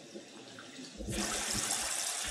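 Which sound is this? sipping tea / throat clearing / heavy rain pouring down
heavy rain pouring down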